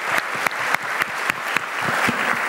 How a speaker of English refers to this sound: One more round of applause for everybody who has contributed today.